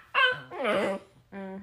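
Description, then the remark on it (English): A dog barks three times in quick succession, loud, with short gaps between the tonal, whiny barks and no talking. “Who are you barking at?”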